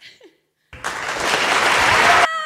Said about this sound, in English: You have to get crowd applause buttons.